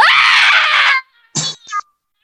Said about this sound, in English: And that just ruined the audio level. It did, The entire thing kind of cut out mid scream, sort of like you're in mid transport.